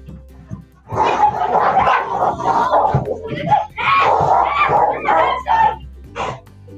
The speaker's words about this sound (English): That did not seem like a playful dog fight.